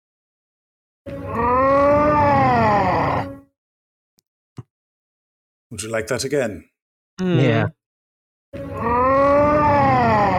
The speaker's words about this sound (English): they're dying in a fun place. It sounds great. Sounds like a festival. That sounds like Final Fantasy Road music or something. Sometimes I couldn't psychically disconnect the death scream from the environment the character was in.